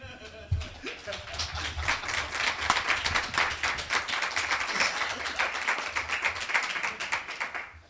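An audience applauds steadily for several seconds after a poem is read, a dense crackle of many hands clapping at an even, fairly loud level that fades slightly at the end.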